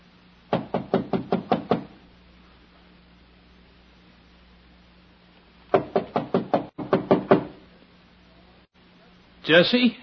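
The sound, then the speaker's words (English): Three bursts of rapid, firm knocking on the door of rooms at the head of apartment house stairs, each a quick run of four to six raps, separated by pauses over a low steady hum, with a brief voice-like sound at the very end. “Why didn't you answer my knock?”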